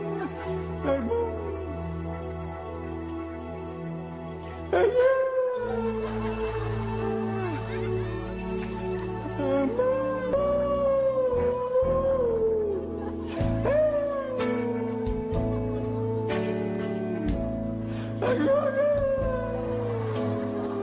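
A woman wails her way through a slow pop ballad in long, wavering, strained notes that slide and almost howl, loud and close over a steady backing track.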